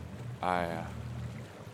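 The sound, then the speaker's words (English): A boat engine drones steadily in fog in a harbor, a low continuous rumble on the water, briefly overlaid near the start by a short, bright tonal swell before settling back to the even hum. “Get the light. Kill the engine.”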